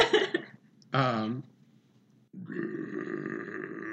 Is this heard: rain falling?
no